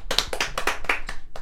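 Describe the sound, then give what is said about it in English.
A short burst of applause after a guest introduction: a handful of sharp hand claps in a quick, slightly uneven rhythm, fairly loud, with no one talking over them. “You guys, give it up”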